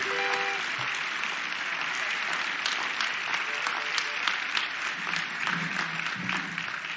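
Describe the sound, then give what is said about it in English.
An audience claps steadily for several seconds, a dense patter of many hands at an even level, with a few faint voices and a brief whistle-like tone at the start. “Come on, let's give them another round of applause.”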